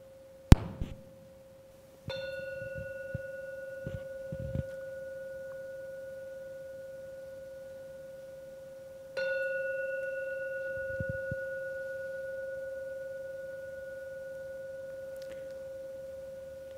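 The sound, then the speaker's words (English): A meditation bell is struck twice after a brief opening tap, three rings in all, each strike blooming into a pure, sustained ringing tone that slowly fades over several seconds, with no talking. The bell ends a meditation. “So I will ring the bell now. Wait for the third ring.”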